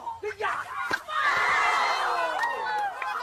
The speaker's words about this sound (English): Oh, damn. That was loud. Listen to this hit. Oh, my God. You can hear her neck pop. Listen to this. And the pop of the crowd.